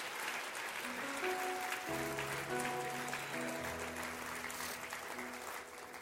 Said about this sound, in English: Come on, clap your hands real good.